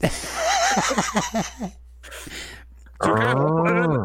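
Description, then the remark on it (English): Chuckling and breathy laughter for a couple of seconds, a brief pause, then a loud, drawn-out cow moo, low and droning with a slight wavering pitch, clear. “That's relative to queefed as it's a cow fart.”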